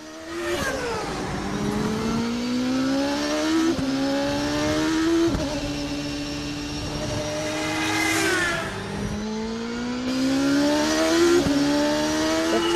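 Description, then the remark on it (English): An IndyCar engine screams loud, its high-pitched whine climbing repeatedly as it shifts up through about six quick gear changes, with no voices. “Well, that is an Indy car. It's an Indy car.”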